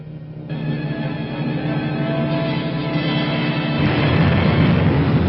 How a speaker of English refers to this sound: Navy and Marine planes. The more the merrier.